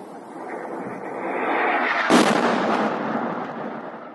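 A single explosion nearby in Kherson: a low rumble swells, then a sharp, loud boom cracks out and rolls away into a fading roar. No one speaks.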